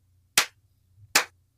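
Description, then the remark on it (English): A person gives themselves two sharp, loud hand claps spaced nearly a second apart, a deliberate slow clap with a faint low hum in the background and no talking. “No, I'll give myself the slow clap.”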